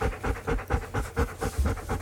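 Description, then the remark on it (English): A one-eyed golden retriever puppy named Jarvis pants rapidly and steadily, quick rhythmic huffs of breath repeating several times a second with no one talking. “So we have a special guest in the form of a golden retriever pup.”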